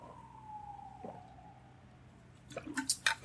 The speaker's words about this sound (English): Let me just take a sip. I'm going to take a sip of my carbonated water, courtesy of Sodarizer.